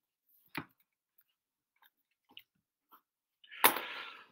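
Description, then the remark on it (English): A short throat-clearing cough, then a few faint crunchy clicks like chewing, ending in one loud, harsh cough with a breathy rasping tail, caused by almond dust in the throat from eating dry almonds. No one speaks. “Don't worry about this cough. I've been eating dry almonds, and it's the kind of almond dust in my throat.”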